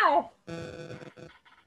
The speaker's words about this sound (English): It was the cat. Yeah, probably. Shake the fist at the cat.